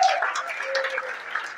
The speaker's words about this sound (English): Clap your hands for Jesus. I said, clap your hands for Jesus.